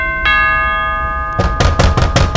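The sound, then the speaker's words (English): A bright, ringing chime hangs for a moment, then five loud, heavy knocks land in a steady rhythm on an airlock hatch door, each a sharp, solid thud. “Suddenly, there is a knock at the airlock.”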